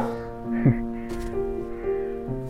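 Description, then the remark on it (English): A dog gives a couple of short, sharp barks over a steady humming tone that runs underneath the whole time. “Thanks for being honest, boy.”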